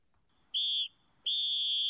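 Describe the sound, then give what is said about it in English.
Two shrill, piercing whistle blasts, a short one followed by a longer sustained one, loud, with a brief gap between them, blown to start the second half. “Do they you always guys, do the whistle? Whistle's too loud.”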